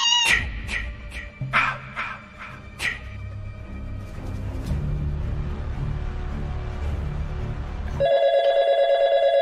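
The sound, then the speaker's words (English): A cat meows several times in quick, short bursts over a low background rumble, then things settle into steady noise before a loud, continuous telephone-like ring takes over near the end. “Shut up, Kitty!”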